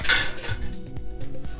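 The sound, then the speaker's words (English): A die is rolled, opening with a bright, ringing clatter on a hard surface, then a few softer knocks and rattles as it tumbles to a stop, landing on a 6. No one speaks. “I'm gonna roll one more.”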